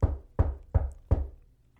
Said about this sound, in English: He knocks on the door again.